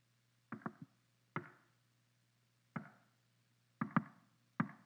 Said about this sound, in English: But they go to this other house, they find the same knocking, and so they realize that there's somebody or something trying to communicate with just them.